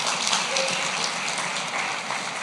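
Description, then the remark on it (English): An audience claps steadily, a dense wash of many hands sustained at an even, fairly loud level without letting up, with no voices standing out, applauding a camp offering that raised $37,000 for missions. “And then, God, hey man, you can clap for that.”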